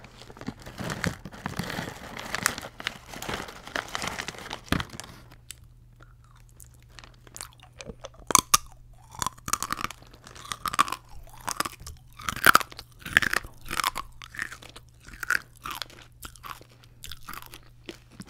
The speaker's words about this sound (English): It's called manimoto because it's so crunchy that it sounds like a vroom vroom vroom of a moto, like a motorcycle.